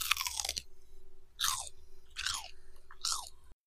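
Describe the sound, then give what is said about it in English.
Loud crunchy chewing of a Reese's peanut butter chocolate candy: four sharp crackling bites spaced under a second apart, each crunch trailing off quickly, with no talking. “Crunch crushed it right now.”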